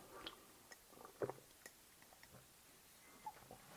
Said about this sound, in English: Let me have a sip of my tea, okay? 1 second.